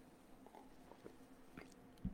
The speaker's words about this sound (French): et laissez-moi prendre une petite gorgée.